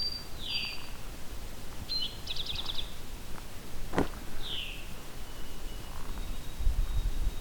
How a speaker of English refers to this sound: It's a couple white-throated sparrows. The mnemonic for that is, "Oh sweet Canada, Canada."